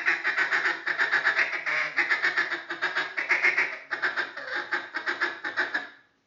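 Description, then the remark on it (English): A cut-down duck call blown loudly, producing a fast, continuous run of raspy hen-like quacks with one brief pause midway, then fading out at the end. “each guy's got a different call and we're all working on ducks coming in and the guy on the double reed, and the cut down's right with him. He's running the J-frame.”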